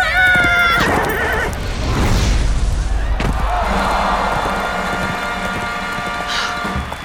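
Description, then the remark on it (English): A circus fire horse whinnies loudly with a shaky, wavering pitch while jumping through a fire hoop in a circus tent, followed by a rumbling rush of thudding hoofbeats and noise that carries on under a steady droning tone. “Hurry, hop down off the fire horse with me.”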